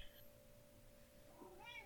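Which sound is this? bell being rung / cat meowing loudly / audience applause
cat meowing loudly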